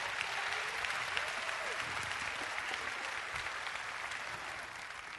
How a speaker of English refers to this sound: Would you give the Lord a clap offering just for a moment?